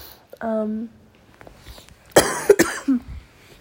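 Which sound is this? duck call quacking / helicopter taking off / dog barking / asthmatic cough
asthmatic cough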